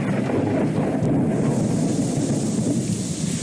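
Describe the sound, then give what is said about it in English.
A heavy thunderstorm roars, with dense, steady rain pounding down and a deep rumble of thunder rolling underneath throughout, loud and continuous with no voices. “We're going to see some crazy storms down there.”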